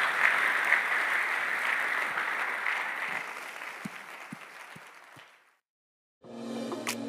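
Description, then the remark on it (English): An audience claps and cheers in a dense, steady wash of applause that gradually thins and fades out, followed after a short silence by a new burst of sound. “48 hours, you're clapping the second house right now.”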